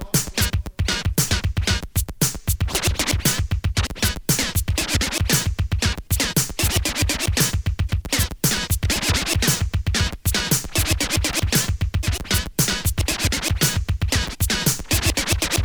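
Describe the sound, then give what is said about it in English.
Turntable scratching cuts rapidly back and forth over a loud, steady hip hop beat, the sharp zipping strokes repeating in tight rhythmic bursts with a heavy bass pulse and no voices. “large crowds build around to hear the scratchy sound.”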